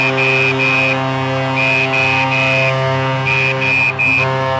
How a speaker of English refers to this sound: And you hear the referee blowing his whistle because there's the skirmish.